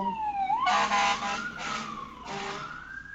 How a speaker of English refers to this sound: Thank you, fire trucks.